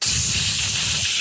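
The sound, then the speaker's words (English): A voice imitates a jet wash with a steady, loud, hissing spray sound held for just over a second, bright and airy with a low rumbling undertone and no words. “Yeah, I've got this image now of him coming back from in the ET outfit at work, and her standing there in hazmat with like a jet wash.”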